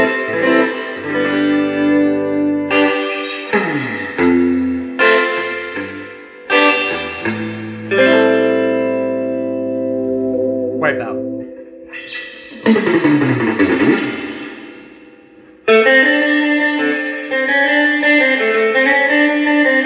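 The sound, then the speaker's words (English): A string instrument on its middle pickup setting plays a run of sustained notes and chords through a reverb effect, all reverb and no gain, with lingering tails and a wet, spacious sound. Loud, with no talking. “No, but the reverb sounds nice on it.”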